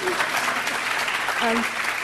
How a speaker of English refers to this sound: Yeah, you may applaud.